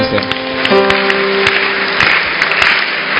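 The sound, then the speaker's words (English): A church audience claps steadily throughout in a dense, sustained wash of applause, with a held keyboard-like tone sounding underneath near the start. “I didn't hear you clap this morning.”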